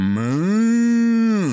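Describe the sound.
A person's voice imitates a cow mooing, one long, loud, drawn-out moo that slides up in pitch, holds steady, then trails off, heard alone without any talking.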